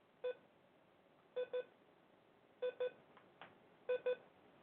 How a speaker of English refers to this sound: This thing is not going to fucking stop beeping. Jesus Christ.